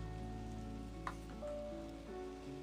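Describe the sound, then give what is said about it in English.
Steady rain patters outside an open window, a soft continuous hiss with no one speaking, while faint sustained tones hum quietly underneath. “I got the window open a little bit, so you got the rain going in the background.”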